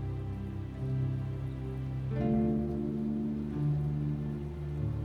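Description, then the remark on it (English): Soft, steady rain patters outside, a gentle continuous hiss of drops, mostly beneath sustained, droning musical tones that swell and shift midway through. “Listen to the gentle rhythm of the raindrops outside.”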